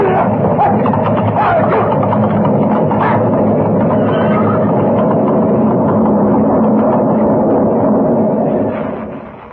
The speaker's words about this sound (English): An avalanche, and we're right in his path. Mr. Kent, look at it.